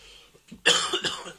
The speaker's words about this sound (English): But the salt on the chips make me want to cough.